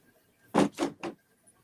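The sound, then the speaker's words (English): A door is pushed shut, three quick thuds and clacks in close succession as it swings and latches, with quiet room tone before and after and no one talking. “My husband didn't close my door.”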